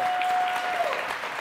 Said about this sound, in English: My man. Give him a round of applause for me, ladies and gentlemen.